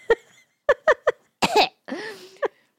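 A run of loud, harsh coughs right up against the microphone: several quick barks, then a longer, rougher fit that trails into a strained, raspy hack, with no talking.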